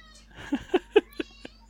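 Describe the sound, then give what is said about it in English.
A female cat gives a quick run of five short, chirpy meows, evenly spaced about a quarter second apart, moderately quiet and fading slightly toward the end, with no talking. “What do you want, cat?”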